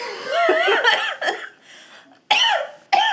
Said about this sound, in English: is coughing again.